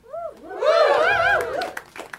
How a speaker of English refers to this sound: Thank you. Thank you for your leg clap. I thought that was actually, like, it was pretty supportive.